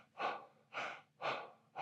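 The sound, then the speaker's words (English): A voice imitates heavy gasping for breath while hiking in the Smokies, four rapid, rhythmic breathy gulps in close succession, loud, with no talking. “And, you know, I'd take a few steps and set on a rock, and I'd just gasp.”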